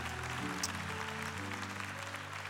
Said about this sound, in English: And you can clap for them. That's a good thing to do.